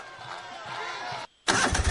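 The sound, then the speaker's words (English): A lawn mower's small engine, an Exmark mower, sputters and turns over with a steady mechanical drone. It cuts out for a short silent beat, then roars back loudly at full throttle. “A proven machine to reduce your mowing time? Count me in. A new Exmark mower costs a whole lot less right now”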